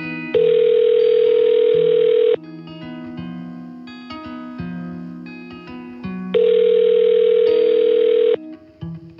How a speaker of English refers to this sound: After the silence, she told me she would put me through, and the phone started ringing again.